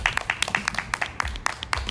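An audience applauds, a dense, irregular patter of many hands clapping at once, sharp crisp slaps overlapping steadily at moderate loudness, with no voices over it.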